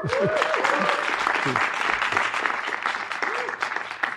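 Dense, sustained clapping from a live audience at the first live recording of a show, welcoming a guest, loud and steady throughout, with a few whoops and cheering voices rising over the applause early on.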